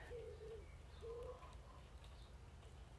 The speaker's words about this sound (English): You can hardly hear a thing, can you? Yeah, I mean, it's fantastic. There are, you know, there are pigeons and the birds around. I can't hear very much else. And it's, I'm just surrounded by countryside. And it's beautiful, really.